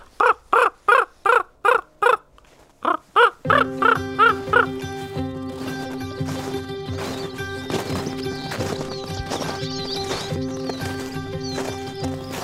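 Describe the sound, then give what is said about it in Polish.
Two ravens chasing each other call back and forth in a rapid series of short, harsh, regularly spaced notes, then overlap in a dense, continuous tangle of calls. The calls are loud, and no one speaks. “Jak dwa osobniki się gonią. To też takie nawoływanie, takie.”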